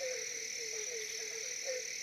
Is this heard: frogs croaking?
yes